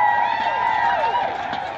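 A crowd cheers loudly and steadily as the Olympic torch relay makes its way to Bristol. Many overlapping voices shout and whoop in rising and falling tones, with a dense wash of noise underneath throughout.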